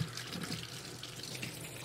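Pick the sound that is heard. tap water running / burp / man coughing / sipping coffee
tap water running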